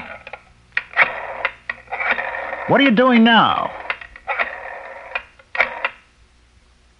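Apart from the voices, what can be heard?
telephone being dialed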